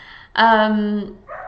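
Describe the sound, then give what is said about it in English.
A dog outside lets out one loud, drawn-out bark that holds a steady pitch for most of a second before cutting off, followed by a quieter murmur. “There are some dogs outside and they're obviously having a party.”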